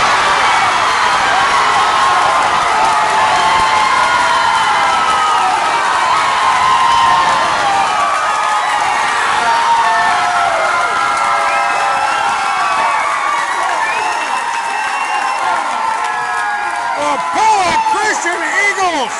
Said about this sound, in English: have plated two on three consecutive hits and have a runner at second base and have taken the lead, and the crowd goes absolutely nuts. As Vanderwall, the number eight hitter, comes up clutch and puts Pella Christian on top.